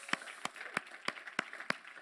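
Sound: audience applause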